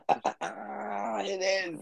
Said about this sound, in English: And you know why? Because, like, you remember my dog crying? His name's Paxton Cooper.